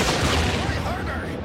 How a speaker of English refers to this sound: Took out that pivot cannon, but they got the deck gun firing now.